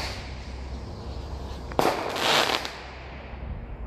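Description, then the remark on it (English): A single firework bang, fired by kids across a lake, echoes over the water, followed by a brief crackling burst, heard over a steady low outdoor rumble with no voices. “Now I've got kids firing fireworks across the lake.”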